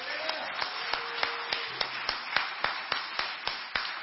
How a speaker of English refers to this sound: Last one, I think this one just deserves a little round of applause. But this is Bishop Kessler's 25th anniversary of becoming a bishop.